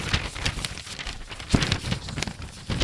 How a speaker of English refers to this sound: Hold on. I just have to take out my paper because.